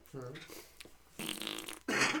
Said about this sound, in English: How does your dog fart so much, dude? Like, what do you feed her? Like, fucking fava beans and Hormel chili?